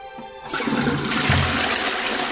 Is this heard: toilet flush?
yes